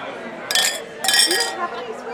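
Two bright glass clinks ring out in quick succession as glasses of regional wine and beer are touched together in a toast, over a low murmur of chatter in a restaurant attached to a museum.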